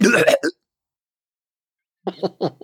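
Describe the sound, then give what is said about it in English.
A voice imitates hacking up a hairball, fairly loud: one rough gagging burst, a two-second pause, then a quick run of short, choppy retching hacks. “He'll wink at the camera and then cough up some hair.”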